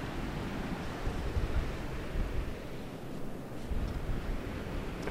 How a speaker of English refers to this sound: Right. So headed right down towards the water's edge. Now the tide is coming in, you can hear the wind, you can hear the sea as well, I dare say. Good old breeze blowing in, so we're trying not to get too wet.